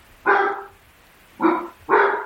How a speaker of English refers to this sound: Sorry, that's my basset hound howling in the background. Is he an Arminian?